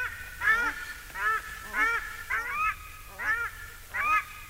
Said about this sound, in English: A pair of paradise ducks. The female's the soprano, and the male honks away in the bass.